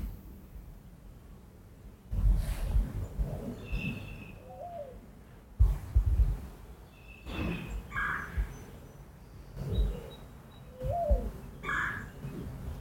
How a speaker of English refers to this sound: Back again. It didn't work the first time, so I've tried it again. Can you hear? I think it's a woodpecker. Can you hear that?